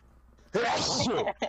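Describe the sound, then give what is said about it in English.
A single loud sneeze bursts out suddenly after quiet murmuring, a harsh, breathy blast lasting about half a second, followed by voices talking. “Bless you.”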